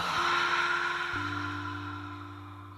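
An airy breath taken before a breathing practice: a steady inhale followed by a long, audible exhale that slowly fades, with a low sustained hum underneath and no talking.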